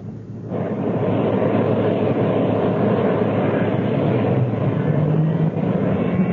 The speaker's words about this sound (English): Engine start completed.